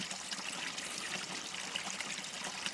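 A shallow creek, just a few inches deep, trickles and burbles steadily over stones, with leaves floating on the cool water and a gentle wind on a late summer, early fall afternoon; a continuous babble with no pauses and no voices.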